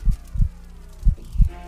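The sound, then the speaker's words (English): A deep, muffled heartbeat throbbing in a person's ears thumps in two slow lub-dub pairs, loud, over a faint steady hum with no voices. “Step by step, my heartbeat throbs in my ears.”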